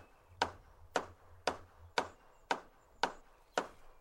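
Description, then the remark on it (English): A lyrebird mimics a hammer striking: seven sharp, crisp knocks in a steady, even rhythm, each a bright woody crack that fades quickly, with no voices present. “It's the hitting of something. It's a hammer. Meant to be a hammer.”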